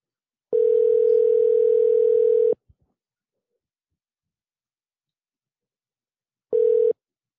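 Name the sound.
phone call ringing out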